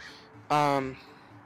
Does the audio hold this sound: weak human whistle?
no